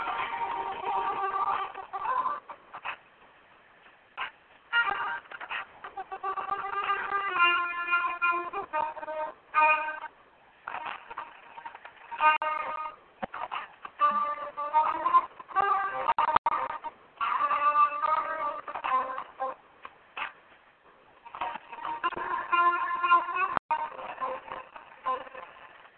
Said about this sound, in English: It's one of my favorite jazz tunes.